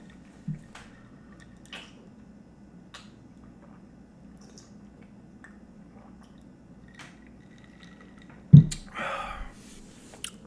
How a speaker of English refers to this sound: I'm going to sip this drink real quick.